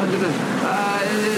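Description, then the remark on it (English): A boat riding ocean waves, with a steady wash of water and wind rushing continuously throughout, moderately loud, and faint indistinct voices mixed underneath. “back to the boat.”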